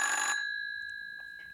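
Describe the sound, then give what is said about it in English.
A single burst of an old-fashioned telephone bell rings loudly for a fraction of a second, then its bright metallic tone lingers and fades away. “Hello? What do you want? Stop ringing! Will you stop, please?”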